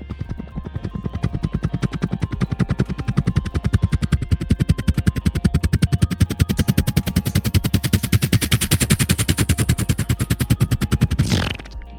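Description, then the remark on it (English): A helicopter approaching from a distance: its rotor thuds in a rapid, steady chop that swells and brightens over several seconds, ending in a quick downward whoosh before cutting off. No voices. “if you listen carefully, I think I can hear a helicopter sort of coming from the distance.”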